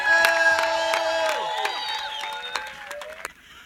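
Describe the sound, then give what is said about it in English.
A church audience gives God a shout of glory, erupting in shouts and cheers, many voices overlapping in sustained high whoops with scattered claps, holding loud for about three seconds before cutting off abruptly. “Can you give God a shout of glory?”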